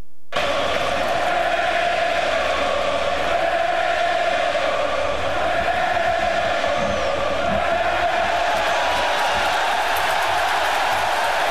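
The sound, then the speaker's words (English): A packed, standing-room-only baseball crowd at a Pirates playoff game roars without letup, trying to get under Johnny Cueto's skin: a dense, steady wall of cheering and shouting that stays loud for the whole stretch, with no clear voice rising above it. “Well, this standing room only crowd trying to get under Johnny Cueto's skin, and they might be.”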